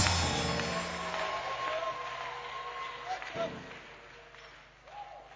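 A church audience in Ghana claps and cheers together, a dense, steady wash of hand claps with scattered rising shouts and whoops, loud at first and easing off slightly toward the end.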